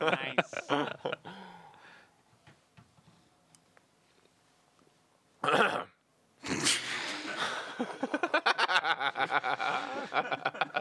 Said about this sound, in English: Yeah, I clear my throat really aggressively with the mic right in my mouth. How does it go? Good. I can get a laugh off it sometimes. It's a power move.